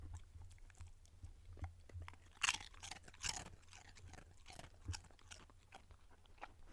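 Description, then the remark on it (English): A dog named Milo crunches and chews Doritos chips in quick, irregular bites, with sharp crackly snaps over a soft low hum and no talking. “Oh my gosh, I love when dogs are like eating chips.”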